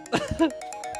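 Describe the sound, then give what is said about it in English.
A brief throaty burst, then a phone ringtone: a steady electronic tone with quick, evenly spaced bright chirps repeating about every tenth of a second, moderately loud. “This is my phone.”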